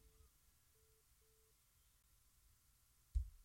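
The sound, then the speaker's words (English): A faint, steady telephone busy signal after a phone call drops, pulsing three times in short, evenly spaced beeps, then going quiet until a single soft thump near the end. No one speaks. “I guess we lost everybody that was on the phone.”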